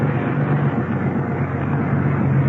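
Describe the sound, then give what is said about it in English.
A white car's engine rumbles steadily as it drives through, a continuous low drone with a broad hiss of road noise that holds at an even loudness throughout, with no voices. “Send the first car through.”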